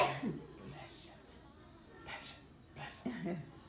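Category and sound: human body sound, sneeze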